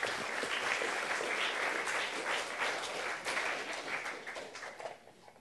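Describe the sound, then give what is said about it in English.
An audience applauds in a dense, steady wash of many hands clapping, holding strong for several seconds before thinning out and fading toward the end. No one speaks over it. “Thank Give you. Him a round of applause.”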